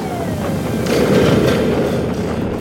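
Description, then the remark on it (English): A plane goes into a freefall and crashes: a thin descending whine over a dense roar that swells into a loud, rumbling crash around the middle, then keeps churning noisily to the end. No voices. “As the parachute opens, Captain Flashman and Eve Arden descend toward the Earth as the plane goes into a freefall and crashes.”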